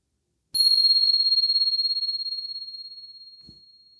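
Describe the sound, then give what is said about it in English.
A single bell struck once to begin a meditation, ringing out with a clear, pure tone that lingers and slowly fades over several seconds, heard alone. “And here comes the bell.”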